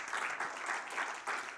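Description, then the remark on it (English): A church audience claps their hands to the Lord during a sermon, steadily, a dense wash of many hands with faint rhythmic surges about every third of a second, and no voices standing out. “Would you clap your hands unto the Lord one more time?”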